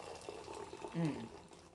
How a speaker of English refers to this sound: Mm. Poured it like a jackass, I know.